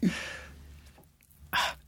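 A person forces out a short, throaty burp that trails off, then after a brief pause a second quick, airy gulp-like burst follows. Both sound fairly quiet, with no talking.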